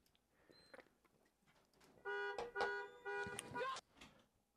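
A car alarm blares loudly for nearly two seconds, a harsh, steady electronic tone broken by sharp bursts, after a stretch of quiet, muffled background noise.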